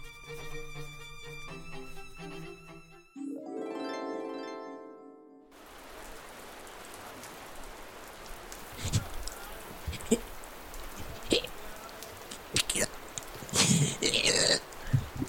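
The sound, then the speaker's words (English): Steady rain hisses outdoors after a few seconds of tonal, musical sound, with sharper spatters and drips breaking through the wash of falling water. “And I'm crying, but you can't tell because it's raining.”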